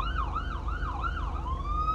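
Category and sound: vehicle, ambulance siren passing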